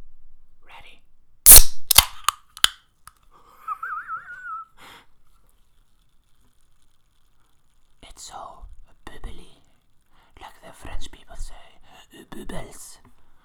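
A drink can is cracked open with a loud, sharp snap and a few quick clicks, then a brief fizzy hiss; soft whispering follows after a pause.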